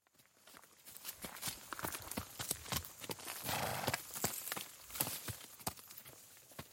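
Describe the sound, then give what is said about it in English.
The heavy hooves of a pair of Shire horses plod steadily through a meadow as they drag the fixed blade of a traditional mower, on August 1st, the traditional mowing day. An irregular clip-clop of many footfalls sounds over a soft rustling background, with no voices. “A pair of Shire horses drag the fixed blade of a traditional mower through a meadow.”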